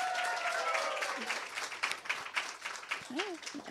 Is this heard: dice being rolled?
no